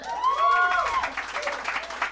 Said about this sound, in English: This is a smattering of applause. Yeah, but an enthusiastic small portion of our crowd, like 7 people really were into that.